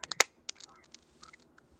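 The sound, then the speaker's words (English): Quiet, irregular clicks and crackles tap out in an uneven patter, a few sharper pops up front, resembling keys being typed on a keyboard, with no voices present. “It almost sounds like somebody's typing on a keyboard, but there's nobody here.”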